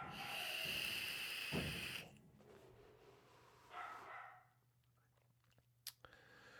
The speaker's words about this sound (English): I'm just too lazy to get up and shut this dog up. Oh my God, it's getting quite ridiculous.